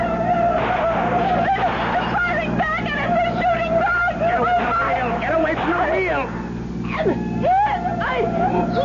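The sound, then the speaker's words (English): A car engine roars steadily at high speed during a chase, loud, while tense voices talk and shout over the droning motor. “Hold the wheel steady. Steer. Don't shoot at him.”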